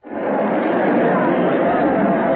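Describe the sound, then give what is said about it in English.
A large crowd murmurs in a plaza, a dense, steady wash of overlapping voices with no single word standing out, swelling in quickly at the start and holding level throughout. “There's a kind of terrace over the crowd here.”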